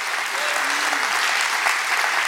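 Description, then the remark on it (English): A church audience claps their hands for Jesus in a dense, steady burst of applause, loud and continuous throughout, with a faint murmur of voices mixed in beneath. “Come on, it's time to clap your hands big for Jesus right now.”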